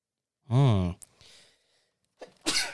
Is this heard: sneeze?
yes